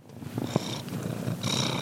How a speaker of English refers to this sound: To cat people, a cat's purr is truly soothing.